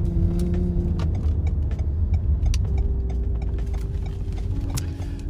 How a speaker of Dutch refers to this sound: Dus ik ga nu ook even de auto wat langer laten rijden weer.